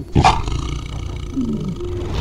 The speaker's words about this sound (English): You'd walk in and hear growling, roaring. I mean, it sounded incredible. Raw power. And he loved being there. He just loved it. All those noises of like 20 cats all together vocalizing at the same time.